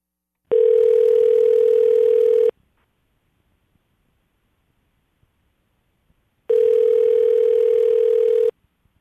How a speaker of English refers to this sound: Let's punch in the phone number and see if we can get Mackenzie on the phone.